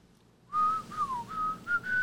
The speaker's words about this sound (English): That's the song, right? The whistling?